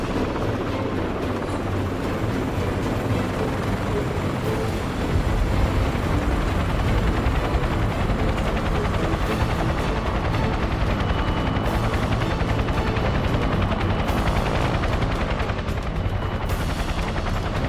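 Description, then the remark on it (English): A helicopter sets down lightly in the center of a helipad, its rotors thudding in a steady, dense churn, loud and continuous with a rough, choppy texture and no voices; other desert camo helicopters are tied down around it. “We set down light in the center of the helipad.”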